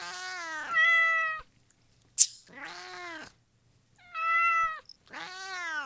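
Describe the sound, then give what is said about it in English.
A cat meows repeatedly, four drawn-out, whining calls with short pauses between them, plus a brief sharp click partway through. No one speaks. “And I tell my wife that about our cats every day.”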